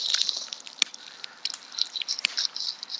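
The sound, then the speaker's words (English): A cigarette lighter flicked repeatedly as a nervous habit: two sharp clicks stand out over a steady, raspy scratching and crackle. It is fairly quiet overall, with no talking. “That's just his lighter. His nervous lighter twitch.”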